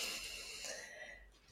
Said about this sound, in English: Again, as we did earlier, you know, whenever you feel a little bit of tension or you need a little helpful energy, just remember to breathe in ease and calm and breathing out love and blessings, and I'll do the same.